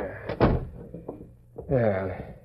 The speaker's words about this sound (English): I'll shut the door.